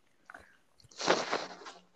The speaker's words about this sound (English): Yeah, I thought you like had a glass full of iced something, and then like all the liquid is gone, and you just like tilted the ice at your face to cause the clinking. I mean, you're not wrong.